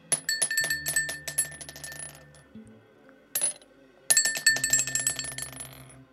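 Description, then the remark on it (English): Dice clatter and tumble across a hard table in two long rattling bursts with a brief skitter between, sharp clicks with a bright ringing edge, and no voices; the dice are rolled for a perception check with disadvantage. “This dice is blessed.”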